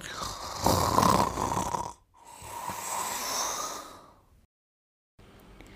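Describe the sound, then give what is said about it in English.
A man snores loudly, two long rasping breaths in a row, each about two seconds, followed by a brief quiet stretch. No one speaks. “Her husband snored away happily at home.”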